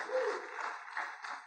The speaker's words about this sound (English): Clap for yourself. You are very good students.